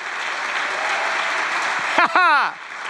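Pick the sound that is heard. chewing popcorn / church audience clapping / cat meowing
church audience clapping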